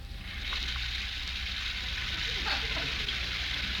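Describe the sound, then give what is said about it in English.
A shower runs steadily upstairs in a house in Beverly Hills, its even hiss of spraying water continuous for the whole stretch, with no voices over it. “While upstairs, we hear the sound of the shower.”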